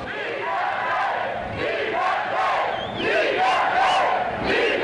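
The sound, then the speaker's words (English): A crowd of as many as 10,000 people at a rally on the Hill, supporting the radio station Schwa and free speech, roars and chants together, many voices rising and falling in steady surges, loud and continuous throughout with shouted bursts over the dense din. “as many as 10,000 of them have gathered here to demand loudly”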